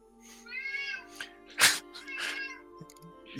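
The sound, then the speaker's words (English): A cat meows, two or three drawn-out, whiny cries with a brief sharp rustle between them, and no talking over it. “She just woke up to take care of the cat.”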